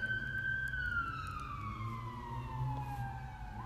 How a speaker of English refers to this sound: That is the loudest siren.